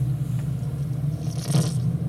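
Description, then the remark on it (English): A steady low drone and road rumble from inside a moving car, picked up muffled by a hidden surveillance bug, with a brief scraping rustle partway through. No one speaks. “They're in a car.”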